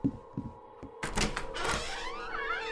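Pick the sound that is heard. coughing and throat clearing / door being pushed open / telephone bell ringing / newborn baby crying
door being pushed open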